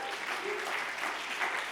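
A church audience applauds the volunteer leader of its Connections ministry, a dense, steady patter of many hands clapping at once, moderately loud, with no voices rising above it.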